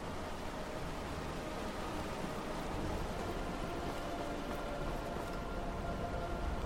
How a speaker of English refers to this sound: It is a gorgeous cavern, though. There is a towering waterfall coming down from above.